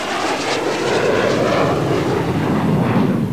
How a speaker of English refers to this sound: It's an airport. There are jets at airports, folks. It's not the quietest place in the world.